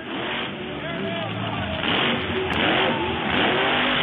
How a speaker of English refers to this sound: I think I found some monster truck footage. Hang on. Let's see if this helps.